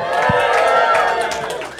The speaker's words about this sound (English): Yeah, and thank you to everybody here who is with us. Everyone just have a cheer or a shout or something or a clap.